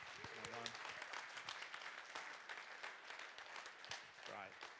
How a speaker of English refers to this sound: Why don't we give them another round of applause?